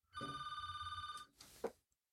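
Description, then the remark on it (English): A telephone bell rings with a rapid, buzzing trill for about a second as a caller phones in to the show, then stops abruptly, followed by a brief rustling clatter and a faint click. “There he is, calling right now. Let me hit a couple buttons here and see if I can bring him in.”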